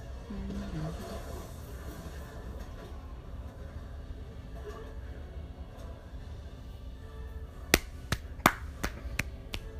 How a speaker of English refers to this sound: That's just me clapping.